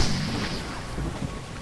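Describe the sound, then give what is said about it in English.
A magical fire bolt explosion effect for a spell cast by the character Roland: a loud, sustained roar of deep rumble and crackling hiss that holds steady for under two seconds, with no voices. “Magical energy crackles in front of Roland before exploding forth in a bolt of burning death.”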